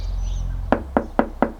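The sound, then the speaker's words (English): Four evenly spaced, fairly firm knocks on a door, following a moment of quiet low background rumble. No one speaks. “I have to admit, I was kind of nervous knocking on the door.”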